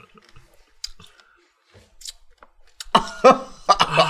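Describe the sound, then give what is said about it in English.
Loud crunching as food is bitten and chewed: a few soft clicks and smacks at first, then a burst of crisp, irregular crunches in the last second or so. “What is this noise it's making? It's like crunching.”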